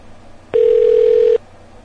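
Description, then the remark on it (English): A single short burst of an outgoing phone call's ringing tone before it goes straight to voicemail, a steady electronic hum that starts and stops abruptly, heard clearly over faint background noise with no voices. “Right to voicemail. One ring of white... That means the phone's off.”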